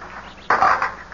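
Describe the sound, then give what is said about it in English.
Dice are thrown onto a drumhead and clatter sharply, one of them cracking apart in two. A sudden bright burst of rattling that fades over about half a second, with no voices. “One of the dice. It broke in two.”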